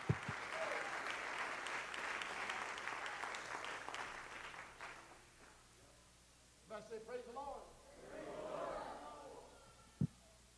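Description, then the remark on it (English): An audience claps their hands again at the preacher's call, in a dense, steady burst of applause for about five seconds, then it fades out and a voice begins speaking, with a sharp thump at the end. “Clap your hands again.”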